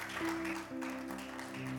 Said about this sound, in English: Celebrate God with a good clap offering.